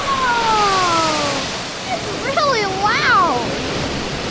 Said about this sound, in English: We've arrived just in time to catch some action at the Harry Tracy Water Treatment Plant. Oh, that water is getting really high. It's going to spill over. Oh, there it goes. Oh, wow.